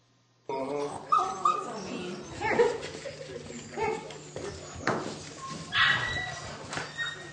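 Several small puppies yip, whimper and growl aggressively in a busy scuffle, with sharp high-pitched cries bursting out repeatedly over a continuous rumble of snarling.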